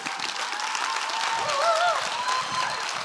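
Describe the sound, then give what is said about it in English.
Steady applause from an audience welcoming a pastor, a dense wash of many hands clapping at even loudness for about three seconds, with a brief high whistle or cheer rising through the middle. “And I want you to give a big hand clap to one of the biggest, not biggest, one of the best pastors in all of America,”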